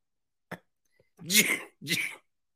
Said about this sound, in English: Can you hear that? My cough is acting up.